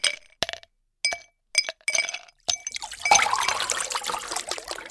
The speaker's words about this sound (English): Here, I'll pour us all some ice water while we wait.